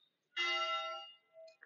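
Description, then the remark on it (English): A single church bell strike in the town of Valencia de la Concepción, with bright, shimmering overtones that ring for under a second before fading, followed by a softer, shorter tone. No one speaks. “And that's a church's bell.”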